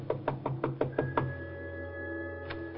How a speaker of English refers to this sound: She told me to wait, then she went over and knocked on the door.